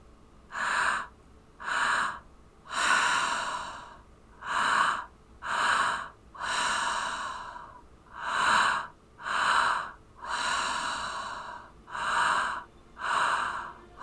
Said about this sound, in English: Keep breathing. Belly, heart, exhale. Belly, heart, exhale. Belly, heart, exhale. You're doing a great job. Stay with the breath.